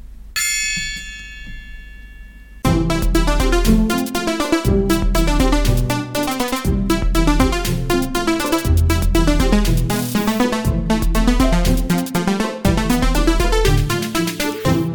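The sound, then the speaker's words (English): A single gong is struck and rings out with a shimmering, slowly fading tone, then loud, dense rhythmic music bursts in and plays continuously to the end. “Pretty perfect as a mournful gong.”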